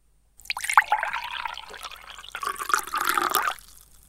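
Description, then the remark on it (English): Liquid is poured steadily into a container for about three seconds, a second pour, a bright splashing stream that shifts in tone as it fills, then stops abruptly. No one speaks. “Prepare to listen to the second pour.”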